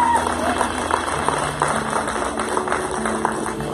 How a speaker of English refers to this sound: Can y'all just give the Lord a hand clap right now like you mean it? Come on.